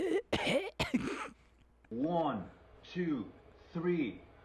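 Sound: coughing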